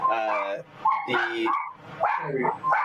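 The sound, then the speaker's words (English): A dog barks in three loud, drawn-out bursts, its voice rising and bending into yelping, whiny tones with brief gaps between them. “It's not my dog.”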